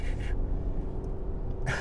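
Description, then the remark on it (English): A voice imitates sanding a car by hand with sandpaper, a finger on top of the paper rubbing it, with raspy, breathy hisses: two quick scratchy strokes, a pause with a low rumble, then one more hissing stroke. “Like, just with my finger on top of the paper and just freaking rubbing it, like sanding.”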